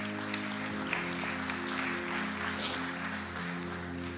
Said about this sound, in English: You can clap for that.